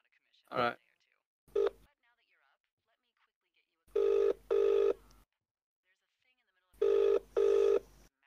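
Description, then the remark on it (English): A couple of quick keypad beeps as someone phones a Domino's store, then the line rings out with two distinct double rings, 'brring-brring', clear and steady with pauses between, no one answering yet. “So anyway, if we got any, I'll phone that Domino's back and see if I can get any service.”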